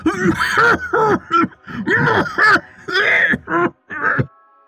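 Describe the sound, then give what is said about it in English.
A voice acts out the Drognar, a story character, coughing: about nine rough, throaty, strained voiced bursts in quick succession, loud, with a short gap before the last couple. “Just then, the Drognar began to cough.”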